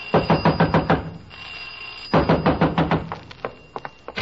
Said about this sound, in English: You better all come quick. I heard someone screaming and pounding on your garage door. There's fumes coming out.